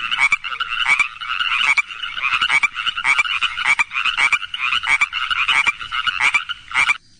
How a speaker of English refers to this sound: Nighttime came, and this is what it sounds like on the pond. Chorus frogs.